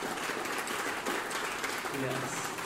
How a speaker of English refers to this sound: Before we move on, let's give these guys a big round of applause for stepping into these roles.